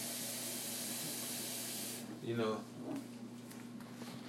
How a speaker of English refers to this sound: turn on my faucet, pouring water into my coffee machine. But I don't have, I make tea in my coffee maker.